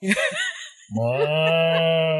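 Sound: cow mooing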